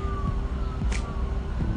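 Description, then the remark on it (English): An emergency siren heard from a college campus holds a steady, slowly sliding tone over low traffic rumble, faint and continuous in the background with no voices. “Like, I can block out all the extra noise that you hear in the background, the sirens and stuff like that.”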